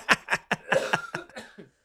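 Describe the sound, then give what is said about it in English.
A fairly quiet fit of coughing: about seven or eight short, hacking coughs in quick succession, growing weaker toward the end, with no talking. “It's like just me saying that is making me cough.”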